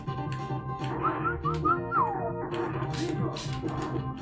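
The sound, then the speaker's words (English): Someone whistles a short, lilting tune of several gliding notes, clear, over a steady murmur of background noise, then trails off after a couple of seconds. “Think about whistling, ….”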